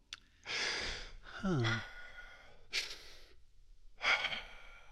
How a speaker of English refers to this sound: When you walked in, and even while you're here talking on the podcast, maybe people are picking up on this now that I mention it, but you're breathing in your upper chest.